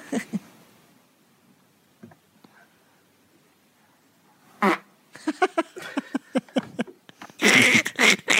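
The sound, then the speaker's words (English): A woman doing yoga farts at the end of her session: after a quiet stretch with soft breathing come repeated quick, sputtering bursts, the series rising into a loud, drawn-out blast at the end, clear. “There's a lady doing yoga and she farted at the end.”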